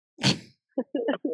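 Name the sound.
sneeze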